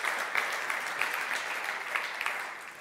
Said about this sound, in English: Come on, if we're going to clap, we should really clap.